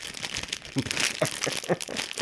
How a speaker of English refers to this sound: Oh, man. Oh, oh, just, how do you open this? Oh, really hard to open plastic bag. Sorry. Just bear with me a moment.